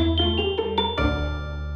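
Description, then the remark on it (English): The doorbell at House Lunari plays a quick run of about five bright notes, then one last tone rings out and lingers, clear, with no voices. “You don't need to ding the bell because you live here.”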